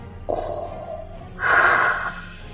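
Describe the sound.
Heavy, labored breathing of the story villain Darth Gator struggling to catch his breath: a long raspy inhale followed by a louder, hissing exhale, with a slightly mechanical, wheezing quality and no talking.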